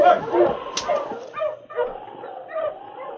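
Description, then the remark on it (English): Several sled huskies bark and yip in quick, overlapping, lively bursts as their driver urges them to push, with a few higher-pitched whining yelps mixed in throughout the short stretch. “All right, you huskies. Push! Push! Push!”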